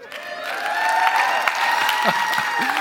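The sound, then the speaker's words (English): A live in-person crowd wearing masks cheers and claps steadily, loud whoops and shouts rising over a dense wash of applause, with a few sliding yells near the end. “Now, what you don't see is they all have masks on, but their shouts are just like a choir of angels tonight.”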